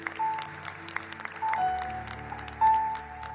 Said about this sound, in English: you give God another hand clap of praise in the house?